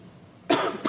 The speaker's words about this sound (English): sorry, I'll keep coughing. I got tested. I do not have COVID. I'm just normal cough, I guess.